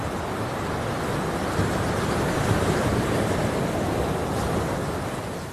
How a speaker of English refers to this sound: The north coast of the island of Oahu is a legendary surf spot. Huge waves break here. It's a surfer's dream.